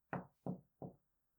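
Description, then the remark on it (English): Three firm knocks on a wooden door, evenly spaced, each a dull thud with a short decay, followed by silence. “At least I haven't got one of his strange friends knocking on the door this time.”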